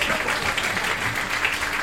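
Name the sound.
audience applause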